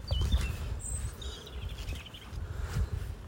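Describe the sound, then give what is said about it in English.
Wet, muddy ground, soaked by rain the night before, squelches in soft low bursts, one near the start and another near the end, while faint high bird chirps twitter above a steady outdoor rumble. “Listen to that squelch. Sorry, there'd been some rain last night.”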